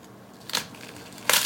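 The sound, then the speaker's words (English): A knife crunches down through an onion being diced into small cubes in two crisp, bright bursts, a short one and then a louder, longer one, with no talking over them. “And you go down through it. Makes a really satisfying sound. Crunches.”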